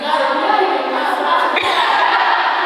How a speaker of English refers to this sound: Let's clap for her.